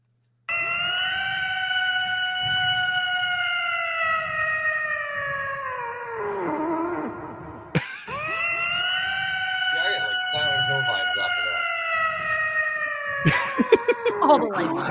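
A cat lets out two long, siren-like howls, each held steady before sliding down in pitch at the end. The wailing is loud, with only a brief pause between.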